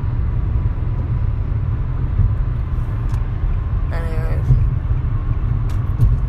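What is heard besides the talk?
car driving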